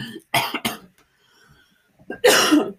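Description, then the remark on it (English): A person coughs twice in quick succession, loud, then after a brief quiet pause lets out a harsher, raspier cough with some throat clearing, caused by dust getting stuck in the throat. “There is dust everywhere, and this thing is getting stuck in my throat. And that's why I'm coughing, okay?”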